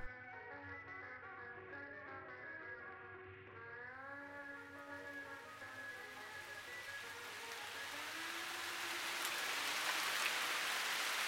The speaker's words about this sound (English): The drizzle had become a deluge, bouncing knee-high off the concrete.